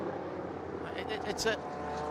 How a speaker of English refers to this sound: I'm not sure what the GT cars are doing at the moment, but they are driving exceptionally slowly.